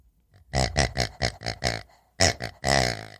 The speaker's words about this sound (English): And you'll get this green pig. Farty. That farts. A farty pig.